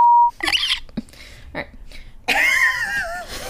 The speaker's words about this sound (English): You, like, squeaked.